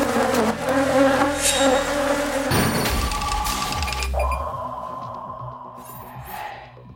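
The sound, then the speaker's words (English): A loud, dense buzzing of a swarm of killer honeybees in Brazil drones continuously, its pitch and texture shifting as the insects move, easing slightly toward the end with no voices present. “But in Brazil, that bee probably won't be alone. Where there's one, there's likely to be a lethal swarm.”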